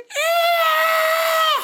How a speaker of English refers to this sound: She swung her stick down and stabbed it into the middle of the shadow. White lightning shot out of it like sauce out of a burger, and its skin came off piece by piece. A horrible screeching filled the air.